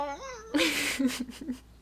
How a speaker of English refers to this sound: My dog is snoring. You might hear like a weird honking noise in this episode. That's him going.